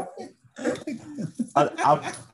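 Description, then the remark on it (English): A giant female German Shepherd dog whimpers and whines in a string of short, uneven bursts, the pitched cries rising and falling between brief pauses. “Just the breathing you're hearing is not us. It's this giant German Shepherd.”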